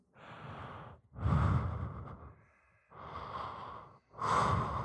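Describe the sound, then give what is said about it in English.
A voice imitates heavy breathing: four slow, loud, breathy cycles alternating inhale and exhale, with brief pauses between, and no speech. “Just heavy breathing.”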